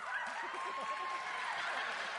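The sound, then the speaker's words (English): An audience gives a steady round of sympathy applause lasting a couple of seconds during a show of hands for a contestant, a dense patter of clapping mixed with scattered voices and murmuring from the crowd. “Could we have sympathy applause?”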